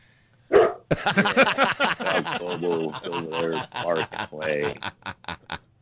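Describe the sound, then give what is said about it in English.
A bull mastiff gives one short, loud bark, and right after it a man starts talking steadily, his voice filling the rest of the moment. “He's a bull mastiff.”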